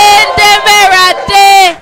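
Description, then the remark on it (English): A church audience shouts loudly in praise to the Lord, with long sustained whoops and cries filling the space, and a couple of sharp claps cutting through. “Give the Lord a mighty clap of thanks. And give the Lord a shout.”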